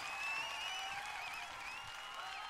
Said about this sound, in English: All right, and that applause must be on account of Wayne's next staff pick here.